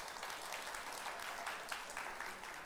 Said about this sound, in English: The Lord's so good, amen. Come on, give me some clap. The Lord is so good. Palakpakan nga natin si Lord.